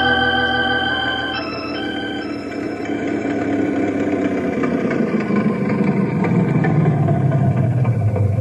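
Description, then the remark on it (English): An old Model A car engine runs steadily, a loud, continuous mechanical rumble that grows rougher and heavier toward the end, with no voices. “Your old Model A sounds good as new.”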